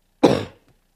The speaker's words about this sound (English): It's tricky when the microphone's right there. Cough into the microphone, please.